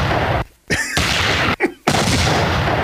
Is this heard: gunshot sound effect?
yes